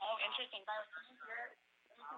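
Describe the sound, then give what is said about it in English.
The speakers' own voices echo back over a phone line through a caller's speaker, thin and tinny, in a few short bursts with brief pauses between them. “We can hear the echo of of our own voice.”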